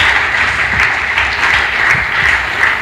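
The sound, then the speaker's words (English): A church audience claps for Jesus during a testimony, a dense, continuous wash of applause, loud and sustained for a few seconds with no speech on top. “Clap for Jesus.”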